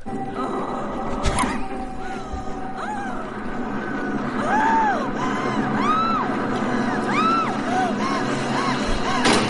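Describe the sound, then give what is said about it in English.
Exaggerated sexual screaming and moaning, a string of drawn-out cries that swoop up and down in pitch, coming faster and louder partway through over a steady noisy background. “Can we play the bad sex noises?”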